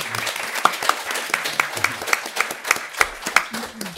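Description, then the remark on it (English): An audience at a panel discussion applauds with dense, steady clapping that holds at a fairly even loudness for the whole stretch, with a few sharper individual claps standing out. “Sorry for curtailing your applause as well.”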